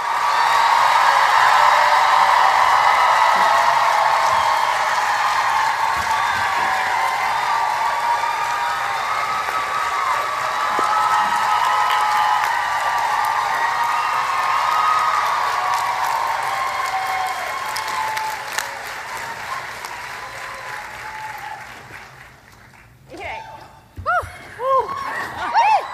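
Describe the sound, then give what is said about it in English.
A large Comic-Con audience at the panel for NBC's The Good Place cheers, whoops and claps in a sustained roar that stays loud for about twenty seconds, then thins out into scattered shouts and a few voices as it fades. “There's a lot Thank of wooing.”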